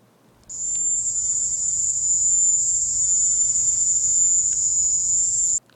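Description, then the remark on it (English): A loud, piercing, continuous high-pitched chirring of the mating calls of crickets commonly found in the Caribbean, such as in Cuba, starts abruptly and holds steady for about five seconds before cutting off, with no voices present. “So here's the sound that the crickets make that was identical to what these people were claiming that they heard.”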